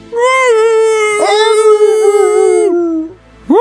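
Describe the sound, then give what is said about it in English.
A dog howls loudly in long, sustained wavering tones, pausing briefly before starting another rising howl at the end. “Jesus, the dog is loud.”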